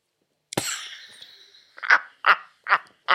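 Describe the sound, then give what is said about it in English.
A voice imitates snoring: a harsh snort trailing into a long raspy wheeze, then four short, evenly spaced croaky snorts in quick rhythm, fairly loud with no talking. “Can Snoring Ruin Your Marriage??”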